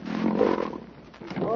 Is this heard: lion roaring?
yes